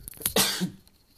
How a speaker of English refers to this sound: I do not know how to edit that sneeze out, so I apologize because this is very bootleg on my phone.